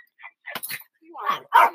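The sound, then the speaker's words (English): A dog barks in a quick series of four or five sharp, moderately loud barks, with the last bursts the strongest. “And excuse me, the dog is barking.”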